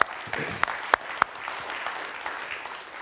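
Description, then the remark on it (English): A church audience applauds the baptism of 8 people, a dense, steady patter of many hands clapping with a few sharp, louder claps standing out early on. No one speaks over it. “I think that deserves another round of applause again, too.”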